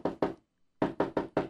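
Two knocks on a door, a short pause, then four more quick knocks in a steady rhythm, fairly loud with no talking.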